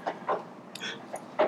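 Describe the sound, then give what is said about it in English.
A dog gives a few short, muffled barks spaced unevenly over a second or so, with a brief higher-pitched yelp-like sound in between. “There's a dog that barks, so it must be the truth.”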